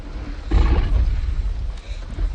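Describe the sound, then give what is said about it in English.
A deep, rumbling T-Rex roar in a film scene swells up after a brief pause and holds for nearly two seconds, loud, with a low growl trailing off and rising again at the end, as the dinosaur tries to scare the kids. “Another low roar, now he's going to try to scare the kids. Give them both barrels, T-Rex.”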